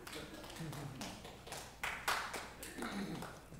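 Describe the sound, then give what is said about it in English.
A small audience breaks into scattered, uneven applause, claps overlapping in a brief, soft patter that swells slightly midway and then tapers off. “Because from where I'm standing, no one here is in prison, which is great. We should all clap.”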